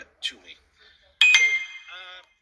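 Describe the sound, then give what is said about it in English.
A bright notification bell sound effect on the From the Bleachers Sports Show dings once, ringing with a clear high tone that fades over about a second, preceded by a few brief, soft vocal sounds. “Notification bell.”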